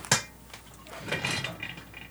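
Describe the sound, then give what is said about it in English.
A sharp clink of glass, then a freshly opened homebrewed wheat wine beer is poured into a glass in a steady, fizzing stream that swells and gurgles for about a second before easing off. No one speaks. “Here, let me see if I can pour it in here and get any sort of head.”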